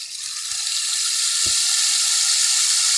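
A rain stick used to mimic a running shower, giving a steady, bright hiss of falling water that builds slightly and holds, with a couple of soft low knocks underneath.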